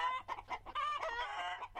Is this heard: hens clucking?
yes